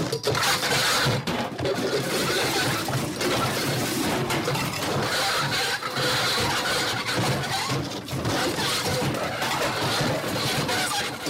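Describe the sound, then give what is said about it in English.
A truck scrapes and grinds for about eleven seconds in an accident as it tries to turn into a driveway, a loud, steady, harsh noise laced with high squeals under the rumble of the vehicle, with no voices. “We actually have audio from the accident.”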